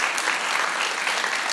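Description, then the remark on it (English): A crowd applauds steadily, many hands clapping at once in a dense, even wash of sound that stays at a constant loudness throughout the short stretch, with no voices standing out. “Why don't we just give them all a clap”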